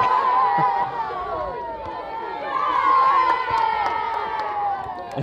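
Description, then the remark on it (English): A crowd of children cheers and shouts continuously at a football goal in an FA Trophy qualifier, as Chasetown go 3-2 up and the goalkeeper can't get the ball from the roof of the net; a bright, high-pitched roar of overlapping voices that swells and stays loud throughout. “The kids cheering on as the goalkeeper can't get the ball from the roof of the net.”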